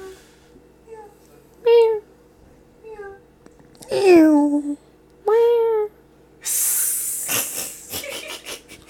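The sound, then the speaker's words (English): People take turns imitating cat meows, a few soft and short, others loud and drawn out, spaced a second or two apart, ending in a rough, hissing burst of breath. “I'm just hearing the people fucking meow.”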